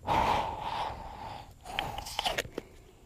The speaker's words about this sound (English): He's talking to the water. He's shaking it. He's putting it under his arm. He's breathing into the water.